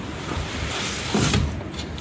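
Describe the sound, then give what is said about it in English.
The sliding door of a polytunnel rolls open with a steady, rumbling scrape that swells louder for a moment midway, then eases off into a rough, continuous hiss. No one speaks. “Past the sliding door that I hate.”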